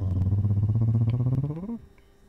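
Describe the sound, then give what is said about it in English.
A cat named Ben purring, a steady, rumbling low drone with a fluttering pulse that rises briefly in pitch before cutting off, leaving near silence. “There's a cat in here now, too.”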